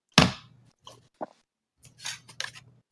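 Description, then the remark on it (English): Wet, crunchy chewing of rotisserie chicken: a loud bite at the start, then scattered smacking and squelching mouth sounds in irregular bursts, with no talking. “Currently eating a rotisserie chicken.”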